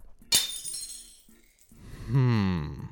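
A sharp, loud crash of breaking glass as a glass case holding a trinket is smashed, followed by bright tinkling shards ringing out, then a person's voice speaks afterward.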